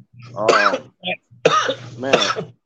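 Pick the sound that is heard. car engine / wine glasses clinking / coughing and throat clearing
coughing and throat clearing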